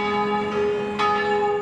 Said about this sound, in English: Here in the ridgetop town of Vignone, bells chime from 14 churches. This is Molise, one of the lesser-known regions of Italy.